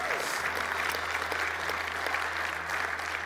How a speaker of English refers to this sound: If we're going to clap, we may as well clap like we mean it. Come on, somebody.